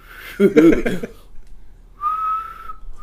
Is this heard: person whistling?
yes